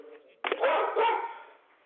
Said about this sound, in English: Start with the live barking, folks. Okay. Whoa. Okay. Something got those dogs agitated, but...